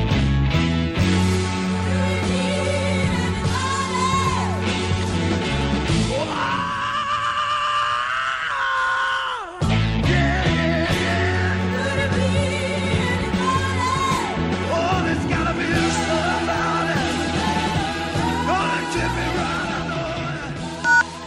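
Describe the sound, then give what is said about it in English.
A loud, dense rock recording of a singer's cover version of a song, where he lets out a long, strained, high-pitched scream that cuts through the full band before the music drives on. “I mean, he probably has the rock and roll's greatest scream throughout that song.”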